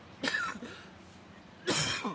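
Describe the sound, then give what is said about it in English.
Two separate coughs from a host on air, fairly loud, each a short harsh burst with a throaty tail, spaced about a second and a half apart with quiet in between. “That's the first time I've coughed on air in 4 weeks.”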